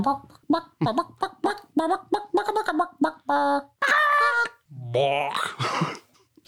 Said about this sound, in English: That was some fucking freaky ass chickens. There's no question about it.